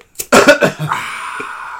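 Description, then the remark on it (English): A quick cluster of harsh coughs, three or four rapid bursts in a row, trailing off into a soft breathy exhale. “I had a cough over his moment.”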